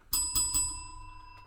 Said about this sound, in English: Yes, the bell is in honor of Craig Ferguson. That's where we got the bell bit. Yeah. We love the bell. We do love the bell.